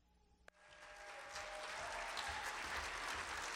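A crowd breaks into applause after a sharp click, the clapping swelling quickly into a steady, dense wash of many hands that keeps building in loudness, with no talking.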